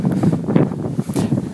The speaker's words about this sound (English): Oh, it's windy up here. I shouldn't have come up here.